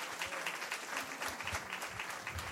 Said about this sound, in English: So let's give them a round of applause as well.